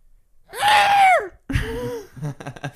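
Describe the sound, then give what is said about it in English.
A person imitates a scream: one loud, high-pitched, sustained shriek lasting under a second, followed by a lower groaning voice and a few short breathy gasps. “I just hear Ruby scream. And it was the scariest thing I'd ever heard in my life, to be honest.”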